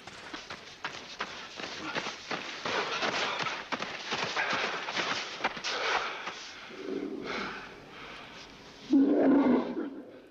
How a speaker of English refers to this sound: So the werewolf howl was actually a mixture of seven different animals intermixed.